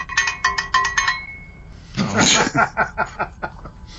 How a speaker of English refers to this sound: He wants another round. All right. We will honor the cowbell.